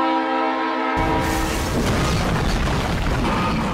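A train horn blares a steady, sustained chord for about a second, then gives way to a loud, dense roar of rumbling, clattering rail noise that continues to the end.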